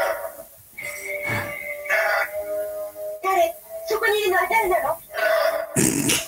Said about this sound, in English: I like that sort of purr. A fly's version of a purr. The flyper.